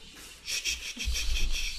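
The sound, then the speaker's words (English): A dog snorts and breathes noisily, with a series of wheezy, hissing snuffles followed by a deeper rumbling snort, no talking. “And shout out to our dog who's here to meditate with us. Quiet, doggy.”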